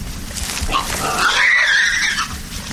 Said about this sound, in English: How big is that one boar, would you say? You can see his scrotum. He's a big male. He's probably close to 320, 330 pounds. See, he's challenging that other boar right there.